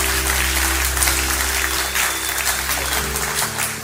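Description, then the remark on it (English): An audience gives God a praise clap, clapping steadily and loudly, a dense wash of applause over a low sustained organ or keyboard chord that shifts partway through. “Come on, let's give God a praise clap today.”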